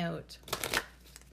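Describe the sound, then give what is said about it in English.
A quick riffle of a deck of Bach flower essence cards being shuffled, a short burst of rapid papery flutters that follows a brief bit of speech and fades into quiet. “Okay, wait, I want to give them a shuffle. I want to see who wants to come through.”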